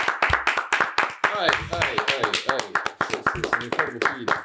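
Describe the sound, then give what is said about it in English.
Sharp hand claps ring out in quick, uneven bursts for several seconds, fairly loud, while voices talk or laugh underneath them. “Yeah, but you ain't clapped in a long time, bro.”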